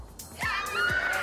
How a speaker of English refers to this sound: Listen to that scream. That is her first WTA title. It means so much to the 26-year-old.